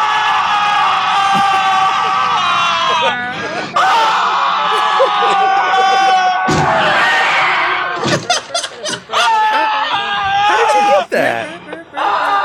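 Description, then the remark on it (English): A large crowd screams and cheers, many high-pitched voices overlapping in a loud, continuous roar with sharp bursts and swells throughout, intense, like an excited audience. “There are far more voices screaming than that.”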